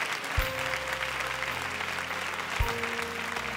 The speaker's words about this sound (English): I say, can you clap your hands and give God praise really quickly?